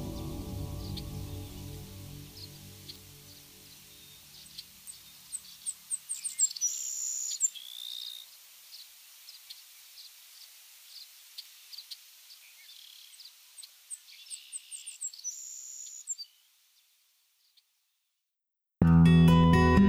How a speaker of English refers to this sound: The Savannah Sparrow is one of the most numerous songbirds of North America